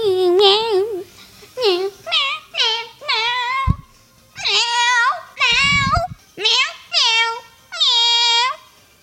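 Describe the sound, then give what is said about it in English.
A person imitates a cat, letting out about ten drawn-out, whiny meows in quick succession with short pauses between them, fairly loud. “Did you turn into a cat by playing this game?”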